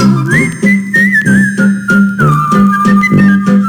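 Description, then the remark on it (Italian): A clear, bright whistled melody glides along over a bouncy instrumental accompaniment with steady, rhythmic bass pulses, loud, with no voices. “Chi a fischiettarlo si proverà.”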